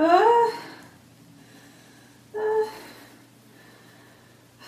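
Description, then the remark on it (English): Heavy labor breathing from someone in labor having a baby: two loud, strained breaths with a voiced, wheezy edge, the first at the start and another about two seconds later, with quiet room noise between them. “Keep breathing.”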